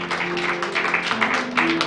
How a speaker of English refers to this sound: We'll give Jesus a hand clap of praise. Would you?